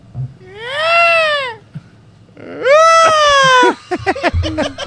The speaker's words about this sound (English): What's a peacock sound make?